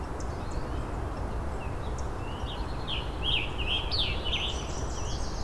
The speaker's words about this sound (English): And a hairy woodpecker. It's the hairy woodpecker again.